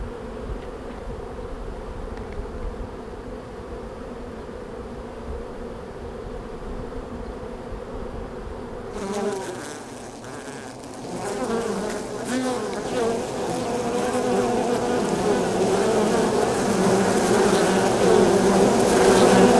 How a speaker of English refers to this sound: and he kept swarming me and hitting me, just this one bee, until I got about halfway to the next set of boxes, the next beehives, and he left me alone.